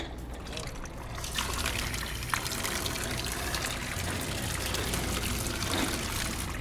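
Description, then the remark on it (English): Water pours steadily and loudly from a tap at a self-serve water station in a store into a container, a continuous gushing splash with a faint rising fill, while indistinct voices murmur in the background. “There's also a busy self-serve water station.”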